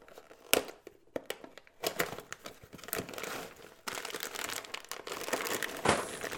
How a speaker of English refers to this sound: Oh my God, Jesus. That's loud as fuck. What you doing there, buddy? What you doing? Hey, I didn't have a Badger to tear my box apart. I had to open it, all right?